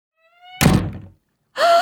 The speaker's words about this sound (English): Why did you not shut the door? It's swollen with the damp weather and hard to close. You may shut it if you wish, but it takes quite a push.